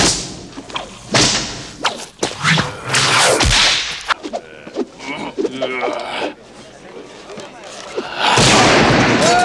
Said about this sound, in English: And we built up a library of whip cracks, which was the basis for Indy's sound.